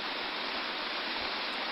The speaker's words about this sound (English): Photographic tower on Bikini shows the column composed of millions of tons of water rising at an initial rate exceeding the speed of sound. The water and spray from the explosion will fall for several minutes.